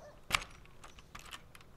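A sharp knock on the door of house number 74, one loud rap followed by a few faint, irregular taps and rustles, with no voices.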